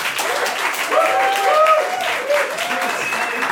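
An audience claps steadily in a dense, continuous wash of applause, with a few whoops and cheers rising above it.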